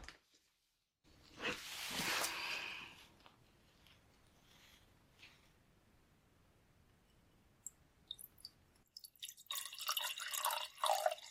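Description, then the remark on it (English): Water pours into a glass for a patient's swallowing test, a splashy burst at first, then a quiet pause before a second, brighter trickling pour fills the glass near the end. “So I'm just going to pour you a glass of water.”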